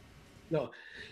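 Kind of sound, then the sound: human body sound, sneeze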